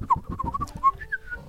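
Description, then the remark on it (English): A person whistles a short, wavering tune, the pitch sliding and warbling through several quick notes before settling into a longer held tone, with no talking. “I can whistle.”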